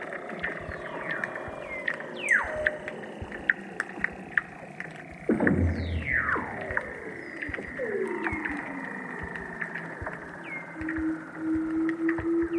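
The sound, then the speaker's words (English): Underwater Weddell seal calls beneath the sea ice: long descending whistles and glides sweeping downward, with trills and a rising chirp near the end, over a steady low hum of water with faint clicks. “You can lie on the sea ice and, if you're lucky, hear the seals singing below.”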